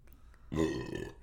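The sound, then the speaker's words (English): A single loud, drawn-out burp after drinking Natty Light beer erupts after a brief quiet moment, rumbling deep and throaty for about half a second before trailing off. “Natty good Light God. Makes for good burps.”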